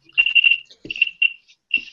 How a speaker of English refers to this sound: It sounds like there are crickets. Maybe there are. That's the problem. Someone has crickets.